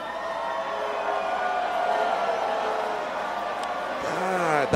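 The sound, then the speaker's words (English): A dense wash of crowd noise, cheering and yelling at a steady loud level for several seconds, with a sharp rising whoop near the end, as the audience makes noise to vote for the contestant Enjoying Life winning a round. “If you think Enjoying Life got that round, make some noise right now.”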